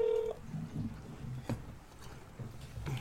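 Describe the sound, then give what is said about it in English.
A single short telephone keypad tone sounds at the very start as someone places a phone call, then gives way to a low, steady rumble of line noise with faint thumps and no talking. “Let's call Cousin Wayne and let's see what Wayne he thinks about the porno. Try to get him on the phone.”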